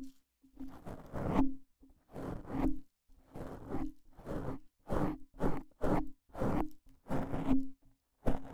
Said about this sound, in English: Brush their hair. Does that feel nice? I'm brushing your hair.